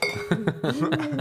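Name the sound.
glass clinking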